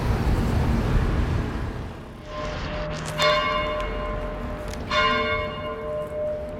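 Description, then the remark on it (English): Church bells in Piazza Collegio Romano, Rome, ring at noon on a Thursday in two clear, resonant strikes about two seconds apart, their long harmonic tones lingering over a steady wash of city traffic noise. “Church bells are ringing in Piazza Collegio Romano because it's noon right now.”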